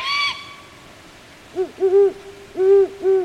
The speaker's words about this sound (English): Let's eavesdrop on a family of great horned owls. Here, a fledgling is calling to be fed, and judging from the young bird's persistence, the parents seem to be responding only with calls, not food.